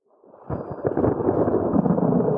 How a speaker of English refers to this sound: And I'm going to take us off topic here because we just had thunder.